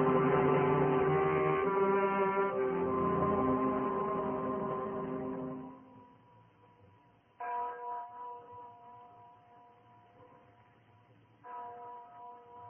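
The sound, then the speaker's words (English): A deep, resonant bell rings loudly for several seconds, its humming tones slowly fading, then tolls twice more, each strike ringing out and decaying. No one speaks. “You hear that bell, Miranda?”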